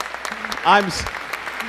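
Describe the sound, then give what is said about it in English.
A crowd applauds steadily, a dense wash of many hands clapping at once, with a short vocal cheer briefly rising above the clapping partway through. “Hear that? And the applause almost wipes me off here.”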